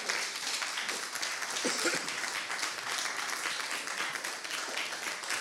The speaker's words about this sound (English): Oh, come on. Let's give God a better hand clap of praise.